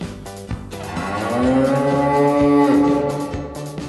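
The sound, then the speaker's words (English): A loud, drawn-out cow moo sound effect swells over several seconds, its low harmonic tone bending slightly in pitch, heard alone with no talking. “This brings me no pleasure to do this, but you get the big moo.”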